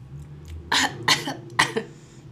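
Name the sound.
cough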